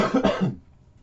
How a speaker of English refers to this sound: One second. Another cough coming.